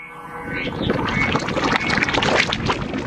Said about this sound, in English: Water, sine wave, reversed.